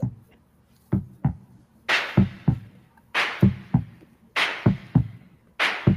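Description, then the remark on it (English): A looping music beat of paired low thumps, like a heartbeat, trading off with hissy, snare-like bursts at a steady tempo; fairly loud and clear, with no voices. “Kind of like a heartbeat type of sample.”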